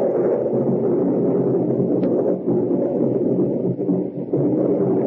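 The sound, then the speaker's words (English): A steady, loud roar of wind moaning down a valley at night and rain flickering across apple trees in La Touraine, France, with a deep rumbling undertone of thunder in the hills and no voices. “Two nights later, in the part of France once called La Touraine, the wind moans down the valley, and rain flickers across the apple trees, and thunder stirs in those haunted hills.”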